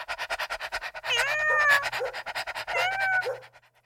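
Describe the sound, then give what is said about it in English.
A dog pants rapidly and steadily while a cat's two drawn-out meowing calls rise and fall over it, the two sounds played at the same time, fairly loud, with no talking. “The topic this week is dogs and cats.”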